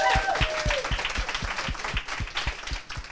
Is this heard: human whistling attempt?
no